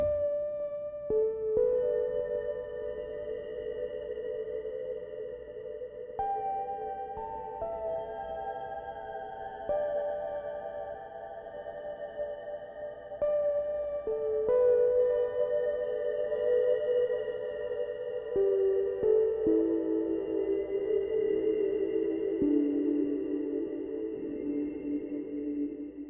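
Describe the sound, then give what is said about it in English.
Sustained electronic tones step between pitches, each smearing into a long, grainy, lo-fi reverb tail from a CXM 1978 reverb in lo-fi mode on the hall setting, with some diffusion and low modulation, overlapping the next note and forming a steady, washy drone with no voices. “It's like a delayed, low quality reverb of sound, and it's really neat.”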